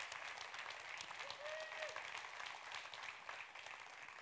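Steady applause from an audience, a dense patter of many hands clapping without pause for several seconds, fairly soft overall, with a brief faint tone rising through it partway.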